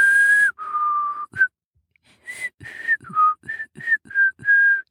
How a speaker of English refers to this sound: So Kai led Rowan up the stairs into one of the kinder dorms, and there he could hear Kesta whistling.